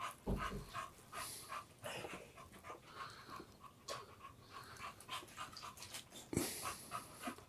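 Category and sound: animal, dog panting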